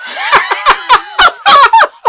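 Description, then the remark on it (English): A person imitates a goose with a rapid run of about nine nasal, bursting honks in quick, uneven succession. The honks are loud, with no other sounds. “Geese, actually, are part French. Honk!”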